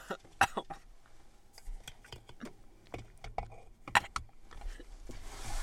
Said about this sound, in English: Good cough. She's coughing outside now.